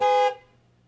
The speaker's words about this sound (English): Now, listen, is somebody beeping? Do you have somebody, wait, is somebody beeping their horn out there?